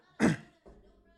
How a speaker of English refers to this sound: Sorry, I had to clear my throat.